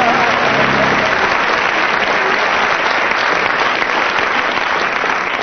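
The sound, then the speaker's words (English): An audience applauds loudly and steadily to judge a round of a sung blues contest, a dense wash of clapping hands that holds at full strength throughout with no voices rising above it. “And from the audience's applause, you win that round”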